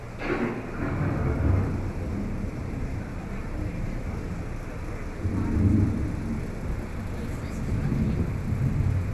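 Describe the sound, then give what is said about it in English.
Low, continuous rumbling rolls through like thunder from an approaching storm, swelling louder around the middle before settling into a steady, heavy roar. “The approaching storm may seem violent and destructive to us, but to nature, it's a new beginning in the cycle of life.”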